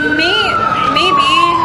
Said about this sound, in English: Maybe after these sirens go off.